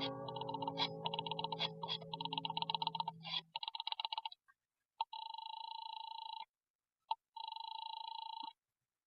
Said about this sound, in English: picked up the phone, and started to dial the number of Harvey's office